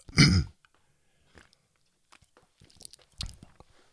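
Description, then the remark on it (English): Someone takes a quick sip of a drink: a short breathy burst, then quiet wet mouth clicks and a soft gulping swallow near the end, with no talking. “Let me just take a real quick sip.”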